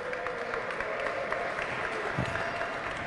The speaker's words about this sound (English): Who will show up at the opening of an envelope, is here to please round of applause for Dave Andelman from the Phantom Gourmet. The best.